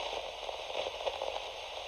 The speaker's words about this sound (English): Silence greeted Mission Control, but the slight crackle of static indicated that the comm channel was open from the spacecraft.